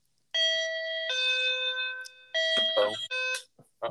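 An electronic doorbell rings in several sustained, bright two-tone chimes with rich harmonics, broken by brief gaps, with a short voice cutting in near the end.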